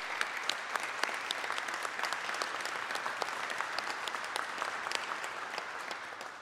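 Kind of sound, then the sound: crowd, audience round of applause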